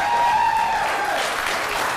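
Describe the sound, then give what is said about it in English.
An audience at an evening event applauds the filmmakers of the Winter Reels Challenge, whose films were made in 100 hours in town. The clapping is a dense, sustained wash of many hands at a fairly loud, even level throughout, with no voices standing out. “Round of applause for all the filmmakers.”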